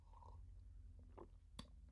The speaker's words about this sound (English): This was due to, and you could possibly hear it in my voice as I take another sip of coffee.